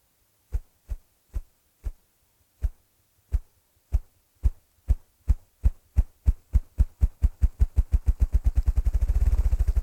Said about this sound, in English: The drumming of the partridge.